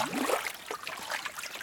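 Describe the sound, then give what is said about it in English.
Water about 46 inches deep splashes and trickles steadily for a moment, a soft, continuous burbling with small irregular sloshes, fairly quiet, with no voices. “It's maybe 46 inches of water, see?”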